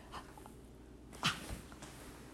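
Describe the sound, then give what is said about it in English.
A cat biting and fussing at its owner, with one short, sharp complaint about a second in, amid faint rustling and soft breathy noises, otherwise quiet, with no talking. “My cat's biting me.”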